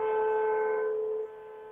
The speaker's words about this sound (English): So everybody on the count of three, let's honk our horns with Jesse. What are you driving? An old Chevy. Okay. Hey, they got the best horns, my friend.